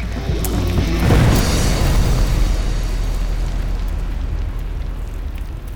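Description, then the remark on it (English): An ignited dynamite and powder blast goes off about a second in, a heavy low boom that keeps rolling and rumbling as it echoes away through a canyon, with no voices. “He had ignited the dynamite and the powder. And the explosion just reverberated through that canyon.”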